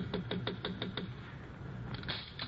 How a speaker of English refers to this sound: Hey, wait a minute. Sounds like somebody's knocking on her door.